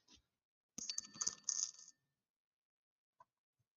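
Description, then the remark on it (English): Dice dropping onto a table: a burst of small hard objects clattering and rattling for about a second, bright, followed by a single faint tap and silence. “Why do I keep losing my dice?”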